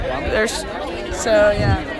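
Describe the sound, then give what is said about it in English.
A steady hubbub of many overlapping voices chattering at once outdoors, a dense crowd murmur with brief louder bursts and no single clear speaker. “And what do you think about this crowd that we've got out here today?”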